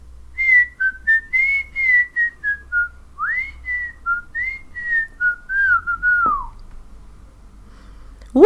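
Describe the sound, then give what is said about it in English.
A person whistles a short, original melodic tune live with no sound edits, a string of clear rising and falling notes in a steady rhythm, ending with a quick upward swoop. “Original whistling.”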